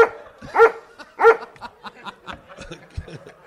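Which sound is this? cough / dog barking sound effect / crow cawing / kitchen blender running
dog barking sound effect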